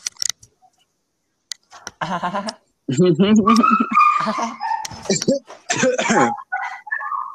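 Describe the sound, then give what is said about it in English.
A dog barks in the background, a run of short, fairly loud barks and yelps following some light jangling clicks at the start, with voices mixed in. “Ambient barking noises.”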